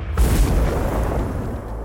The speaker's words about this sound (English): According to our former General Secretary, Andrew Vickers, the tragedies in July started way back in 1902 with a massive explosion at the Mount Kembla coal mine, which was heard 11 k's away.